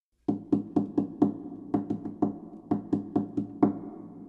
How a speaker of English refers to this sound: Sometimes, you know what? They don't even play the strings. They just knock on the wooden body of the harp.